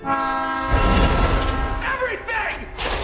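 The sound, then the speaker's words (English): A train sounds a sustained horn, then a loud, roaring rumble of a subway train rushing past, with brief voices heard faintly under the din, in the subway fight scene between Spider-Man and Flint Marko. “Yeah, that's when the trains come by and he's hitting his head into it.”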